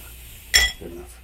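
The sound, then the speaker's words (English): A single bright clink of ice against glass in a gin fizz cocktail, a short sharp chime that fades quickly, followed by a faint softer knock. “There's also ice in this one.”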